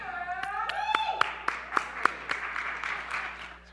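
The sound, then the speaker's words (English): An audience claps, a steady wash of applause with several sharp, evenly spaced claps standing out above it, plus a brief vocal cheer near the start before the clapping fades. “I'm so happy y'all clapped at that.”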